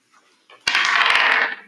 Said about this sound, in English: Is there a dice in that bowl? Nope. The green one. Any dice in there? Yes. Sweet. You can roll the dice. Can you roll the dice for our correspondent since we're... Of course.